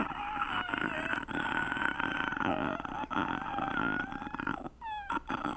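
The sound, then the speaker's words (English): A human voice produces a gritty, raspy growling scream, held in long rough bursts with a few brief breaks, loud and harsh with a beast-like snarl and no talking. “That's one phonation because I found out there's different kinds of screams.”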